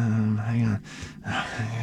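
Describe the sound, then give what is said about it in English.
Heavy breathing rasps straight into the microphone, with one loud airy exhale in the middle between stretches of low, droning vocal hum. “Less breathing.”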